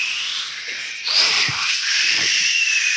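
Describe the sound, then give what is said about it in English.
A voice imitates the noise of a mattress expanding: a long, steady hiss like air rushing out, holding a bright, breathy tone for about three seconds with slight surges and no words. “And then when it expands, does it make a noise like...”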